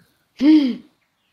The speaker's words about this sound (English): Sound of a bird. A gray raven arrives to you with something for you, a parcel.